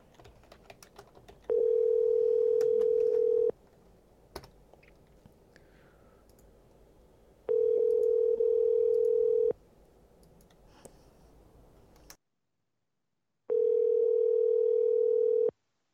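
A telephone tone sounds in three steady, mid-pitched two-second bursts separated by pauses, with soft clicks and tapping of a phone number being dialed heard beforehand and between the tones, on a call to Esporta Fitness. No one speaks.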